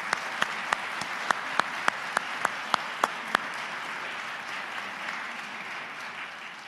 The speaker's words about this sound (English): And I also want to clap for you. I know that's not common.